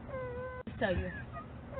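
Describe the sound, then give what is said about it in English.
A child cries in a high, drawn-out wail, breaking off briefly before rising again into a quavering whimper, fairly loud with no other talk. “Don't cry. Don't sure cry, and you better fight.”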